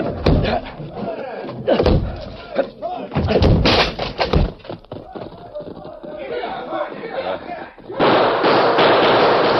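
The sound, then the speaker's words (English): Several heavy, forceful thuds and cracks as a locked back door is battered and broken in, with shouting and crowd commotion around it, then a busy, noisy rush of voices at the end. “Locked! We'll have to break it. Stand back.”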